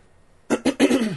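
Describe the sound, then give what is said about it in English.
After a moment of quiet, a person with a throat stuffed from allergies lets out two sharp coughs in quick succession, followed by a longer, rough throat clearing that trails off. Loud, with no talking. “Sorry, my throat's very stuffed, so like I might be coughing and hacking my way through this podcast, which is great.”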